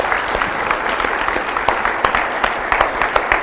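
A crowd claps steadily for retail workers, dense overlapping hand claps with sharp individual slaps poking through, sustained at a fairly loud, even level with no talking over it.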